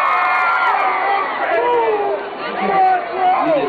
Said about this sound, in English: No, I was just cheering. Okay. By cheering, you don't necessarily say that you want it or not. You're just yelling, I guess.